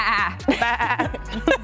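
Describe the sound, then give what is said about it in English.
A goat bleats several times in quick succession, loud, with wavering, quavering cries and short breaks between them and no talking. “I was just trying to figure out what the word is for a group of goats, and I think they just said it's a herd.”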